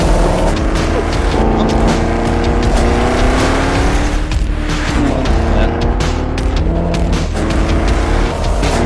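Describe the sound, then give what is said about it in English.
A silver Camaro ZL1 1LE roars around the race track at Spring Mountain, its engine loud, the pitch climbing steadily as it accelerates, with a brief tire squeal and the motor droning on throughout. “He's in the car. Oh! Look at it go!”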